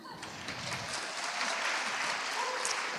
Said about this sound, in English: There you go. You got a clap there.